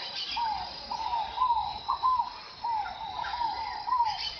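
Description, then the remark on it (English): Tropical birds, including toucans, flycatchers, parakeets, antbirds, pygmy tyrants and macaws, call back and forth in a busy chorus at sunrise near the Rio das Mortes in Mato Grosso, Brazil. Short rising whistles repeat every half second or so over a steady hiss of chirping. No voices. “At sunrise, the River of the Dead comes alive with the sound of birds.”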